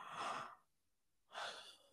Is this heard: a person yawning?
yes